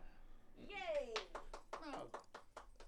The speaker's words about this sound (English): Well, man, that ain't nothing to clap for, man.